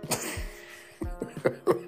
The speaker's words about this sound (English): My wife said my podcast is growing, so she said she hates when I you know, kind of like clear my throat and stuff while I close out.